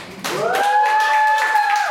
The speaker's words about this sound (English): Now, I recently turned 40. You guys can clap now.